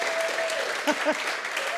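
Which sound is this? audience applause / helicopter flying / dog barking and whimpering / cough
audience applause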